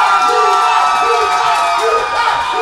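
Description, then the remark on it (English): A crowd cheers loudly and continuously to vote for a contestant's round, with judges scoring by the loudness of the crowd, a dense roar of shouts and whoops from many voices that holds steady for a few seconds. “If y'all think Luther took that round, make some noise.”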